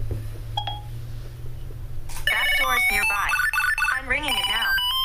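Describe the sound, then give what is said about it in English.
A Tile Bluetooth tracker tag, triggered with a Siri shortcut, rings with a rapid, high-pitched electronic melody of warbling chirps. It kicks in after a couple of seconds of low hum and plays loudly until the end. “Then you just follow the sound and until you find it.”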